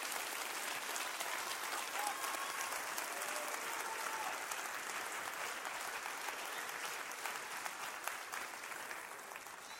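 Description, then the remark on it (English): A church audience claps hands to thank God after 25 years, in sustained, dense applause, a steady wash of many overlapping claps that holds fairly even in loudness for the whole stretch, with no voices standing out. “Why don't we clap our hands real big tonight and thank God for after 25 years.”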